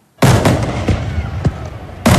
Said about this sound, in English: It's the season of fireworks, or has been, but are fireworks fading?